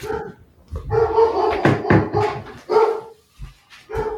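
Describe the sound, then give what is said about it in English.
A female dog barks repeatedly, a string of loud, harmonic barks with short gaps between them, some drawn out almost into yowls, with no one talking over them. “Oh, my dog is barking.”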